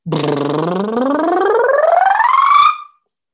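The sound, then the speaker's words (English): A voice does a lip buzz, buzzing the lips together in a siren that glides steadily upward from the bottom of the voice to the top over about three seconds, buzzy and loud, before stopping abruptly. “So when you go up on a lip buzz, you buzz your lips together like this.”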